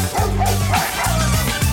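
A dog barks loudly and close by, three sharp woofs in quick succession with brief pauses between them, with no one talking.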